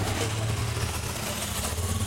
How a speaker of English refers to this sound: A big motorcade of bikes going by.